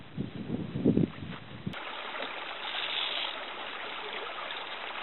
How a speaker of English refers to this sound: All right, I'm about 2.5 miles into my walk over to my other spot. I want to look at, just stop this creek to fill my water bladder and probably wash up a little bit, and then I'll be on my way.